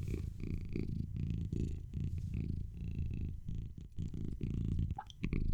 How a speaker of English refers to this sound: this concludes our cat purring